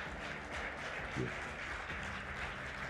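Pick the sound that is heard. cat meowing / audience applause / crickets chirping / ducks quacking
audience applause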